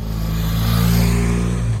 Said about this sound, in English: Speeding police motorbikes swept through the streets of Cornwall this morning ahead of US President Joe Biden's arrival for the G7 summit.